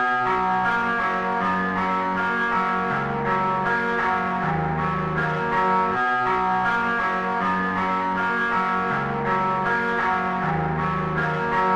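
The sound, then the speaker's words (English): A looped guitar lick, slowed down and pitched down an octave and drenched in effects, its deep, bell-like tones shimmering and echoing in a steady, repeating pattern at a constant, fairly loud level with no voices. “Then pitched it down an entire octave and added some effects.”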